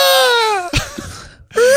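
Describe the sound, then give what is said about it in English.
A loud, shrill screech like a seagull's cry: one long wail that slides downward in pitch, a brief rustly pause, then a second piercing cry starts. No one speaks. It is a piece of music that sounds like screeching seagulls. “Sorry, I forgot to give you your weekly... Deadly Seagull scream.”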